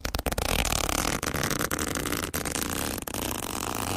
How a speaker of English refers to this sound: Mm, that zip's taking longer to open each week as well. It's so heavy, the mailbag.